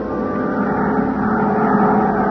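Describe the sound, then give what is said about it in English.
A small charter plane, Al Sterner's, drones steadily in flight over the Mojave desert toward the ghost town of Calico. Its engine makes a loud, constant rumbling hum with no change in pitch, and there are no voices. “to Al Sterner for his charter plane to the ghost town of Calico.”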